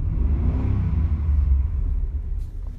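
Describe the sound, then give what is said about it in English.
A car engine revs hard, a deep rumbling roar that swells in pitch, holds for a couple of seconds, then eases off as the car peels out of a parking lot. “In his anger, he quickly turned on his car, and he peeled out of the parking lot.”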